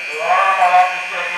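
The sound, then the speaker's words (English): A harsh prison alarm buzzer, triggered by an officer, drones steadily and loudly for the whole moment, a continuous electronic tone with no breaks, insistent. “A supervisor in the command center uses the overhead speaker system to get the officer who triggered the alarm to check in.”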